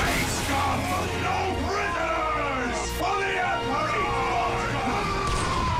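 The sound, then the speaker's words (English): Several voices shout and yell over one another, crying "oh, my God, it's Special Interest Theater", loud and continuous, with rising and falling cries overlapping for the whole stretch. “They're shouting, oh, my God, it's Special Interest Theater.”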